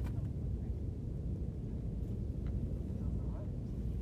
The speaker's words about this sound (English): We're at the top of Taft Peak. I hear a helicopter in the background.